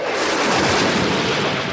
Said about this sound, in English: But with that said, let's cue that lightning.